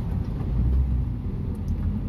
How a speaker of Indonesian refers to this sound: Terus dia kayaknya ngerekamnya beneran di pinggir jalan cuy. Ada suara truk lewat kayak gitu sih.